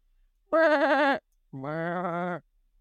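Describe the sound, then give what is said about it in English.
A voice imitates a sheep, giving two wavering bleats in a row, the first higher and shorter, the second lower and longer, fairly loud with no talking. “Okay, next, I'm going to need you to make a sound of a sheep.”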